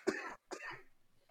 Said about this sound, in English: You coughed. Sorry.